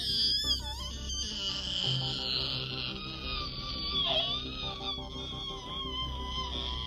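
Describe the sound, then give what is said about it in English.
A voice imitates nails scraping on a chalkboard: a shrill, wavering, high-pitched screech held continuously for several seconds, with slight bends in pitch and no talking. “Yeah, sickening, chalk, nails against chalkboard noise.”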